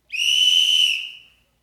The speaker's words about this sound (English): I love the whistle. It's so fun.